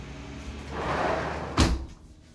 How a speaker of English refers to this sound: I got to close the door real quick.